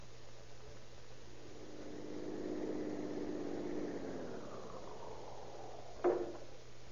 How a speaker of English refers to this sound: Well, there you are, Officer Harris. How did you like your first ride in the police car? Oh, I feel kind of worn out. Oh, but what punishment you fellows give a car.